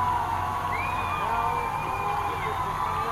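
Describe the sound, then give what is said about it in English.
A large crowd roars and cheers at midnight as gates open and people stream across amid firecrackers, celebrating after 13 years, in a steady, dense wash of noise, with a shrill whistle rising and holding above the din for a couple of seconds. “A cheer, a tremendous cheer, yes.”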